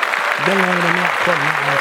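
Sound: applause sound effect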